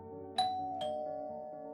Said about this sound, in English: On June 3rd, 1945, Miep's doorbell rang.